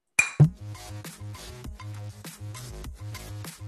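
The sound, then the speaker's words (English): A bright clink of glasses rings out sharply right at the start, quickly followed by music with a steady, pulsing bass beat that carries on to the end. “Okay, let's have last one. Cheers tayo, pre. Cheers.”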